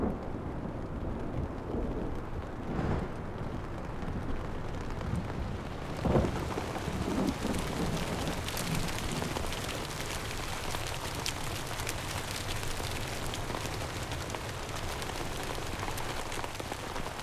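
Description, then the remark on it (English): Steady rain pours down in a dense, continuous hiss, with low rumbling thunder rolling underneath and a brief louder crack around the middle. No voices are heard. “Rain, wind, and sun will bring new energy and present new challenges to the first islanders.”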